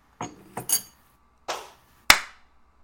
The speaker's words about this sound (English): If you guys clap, will it pick up on your mics?